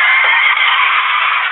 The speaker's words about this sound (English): He was on his way home to his wife after spending the evening with his mistress, Margaret, when his brakes went out, sending him careening down the mud-slicked hillside.